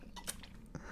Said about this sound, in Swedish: Jag tar en liten sip of my tea first.